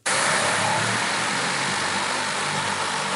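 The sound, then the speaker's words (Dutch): A Volocopter, an all-electric passenger drone with 18 rotors from the German firm Volocopter, flying at the Drone Week in the RAI in Amsterdam: a loud, steady, breathy whir with a low droning hum underneath that holds constant throughout, with no voices. “Nou, zo klinkt hij dus, de Volocopter.”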